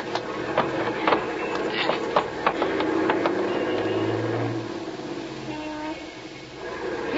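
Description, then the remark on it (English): A heavy truck rumbles and pulls away through traffic as the traffic light changes, with kids grabbing onto it to hitch a ride, its low engine drone mixed with sharp rattling clacks early on, the noise easing off over the last couple of seconds. “That truck there looks okay. Yeah, we're just gonna grab onto it.”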